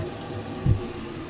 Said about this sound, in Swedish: Samtidigt så här kokar vattnet i kaffe i vattenbryggaren eller vad man säger. Vi ser vattenkokare.